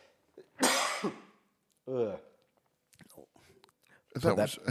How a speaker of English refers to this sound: That was not a CGI cough, folks.